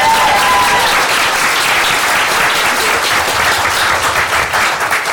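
A crowd breaks into loud, sustained applause for the evening's emcee and host, dense overlapping claps filling the whole clip at a steady level, with a faint whistle-like tone at the very start.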